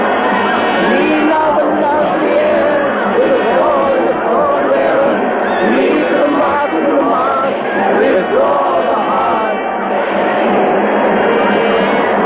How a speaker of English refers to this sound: The crowd shrieks.